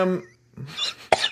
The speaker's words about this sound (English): Sorry. What the fuck just happened there? I just got a cough. Hold on.